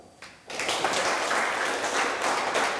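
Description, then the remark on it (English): A few people in a class clapping on a teacher's instruction, starting after a short quiet moment and continuing as a steady, moderately loud patter of overlapping claps until the end. “A few of you clap.”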